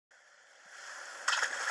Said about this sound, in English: That's it. I'm throwing this thing into the fucking ocean.